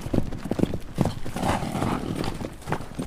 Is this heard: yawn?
no